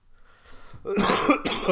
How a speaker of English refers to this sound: What a timely cough.